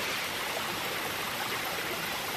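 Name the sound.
flowing stream water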